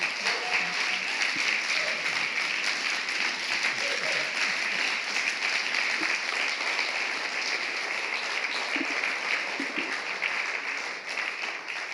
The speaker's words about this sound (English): Yes, let's give him a clap.